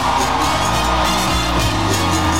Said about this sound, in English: Let's do this one. Let me hear you scream!